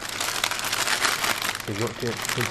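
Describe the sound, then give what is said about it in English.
Steady rustling and soft crinkling as a sponge cake (Swiss roll) filled with raspberry jam is rolled up in a tea towel, then a voice begins speaking over the fading fabric noise. “So, you're going to fold it in, and then literally either use the paper or the tea towel to actually just roll it up.”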